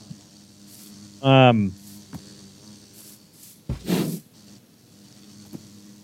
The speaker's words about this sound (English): So we have a couple of cool ones: bees and parrots. So that's a bee. Ooh, whoa.